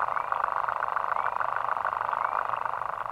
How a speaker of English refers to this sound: But this one tiny water bug, called in fact the lesser water boatman, makes a sound almost as loud as a whale by vibrating its penis underwater at a very fast rate.